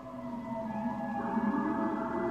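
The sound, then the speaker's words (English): About five police car sirens wail together in a New York City street, several steady, high-pitched tones overlapping at a constant loudness over a low rumble, with no one speaking. “You hear the sounds of New York City?”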